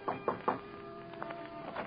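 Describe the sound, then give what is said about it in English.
Three quick, evenly spaced knocks on the door of Juan Cinto's 10th-floor suite at the Lorma Hotel on Park Avenue near 70th, firm and hollow, followed by a quieter stretch with a faint hum and a few soft taps. “But then, how could I think that since Juan would not knock?”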